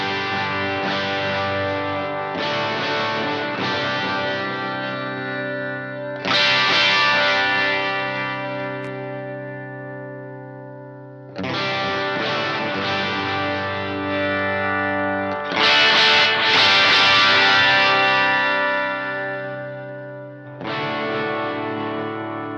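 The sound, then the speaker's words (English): Electric guitar strums open chords through a treble boost pedal with its tone control rolled down to 9 o'clock: about six loud, bright, slightly driven chords, each left to ring out and slowly decay. No one speaks. “Here's some more open chords to see what that's done.”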